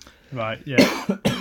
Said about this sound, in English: Yeah, the whole of the podcast is going to be me coughing because I got a bit of Doritos stuck in my throat.